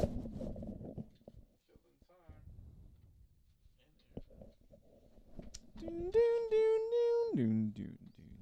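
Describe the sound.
A single long, drawn-out cat meow rings out loud near the end, holding a steady pitch before sliding down, after a stretch of quiet, murmured talk.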